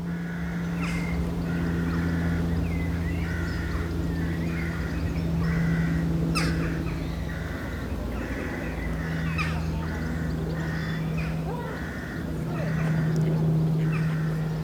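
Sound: ducks quacking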